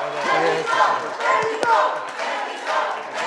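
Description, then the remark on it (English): A loud, continuous burst of many voices shouting and cheering together: the Mexico bus team jumps out of their seats, cheering and hugging, as third place is announced for a contestant from Mexico. The voices are excited, with a few sharp thumps and claps in the noisy crowd din. “The entire Mexico bus jumps out of their seats, shouting, cheering, hugging their teammates.”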